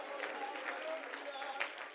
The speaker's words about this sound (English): What this world needs to hear is the shout of praise. Oh, can somebody clap your hands and shout hallelujah?